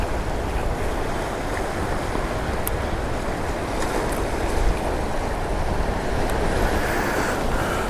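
Ocean waves roar in a steady, unbroken wash of surf, loud and constant with a slight swell midway. Wind rumbles underneath, and no one speaks.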